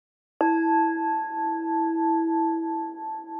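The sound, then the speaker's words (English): A single bell is struck once as a door-opening sound effect, ringing out clearly with a bright, sustained tone that wavers gently as it lingers for a few seconds, heard alone. “I feel that the normal squeaky hinge noise should go, and that we should have a lovely bell or a I'm sure we can manage a bell.”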